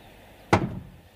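A single heavy wooden thud as a door is barred shut, sharp at first and then a low rumbling decay, against quiet room tone.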